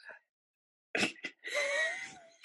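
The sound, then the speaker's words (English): Two quick, sharp hiccups jolt out in a row, followed by a drawn-out, strained vocal moan, then another abrupt hiccup at the end, fairly loud and with no talking. “I got the hiccup.”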